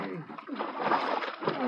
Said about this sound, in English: pull him out of the water.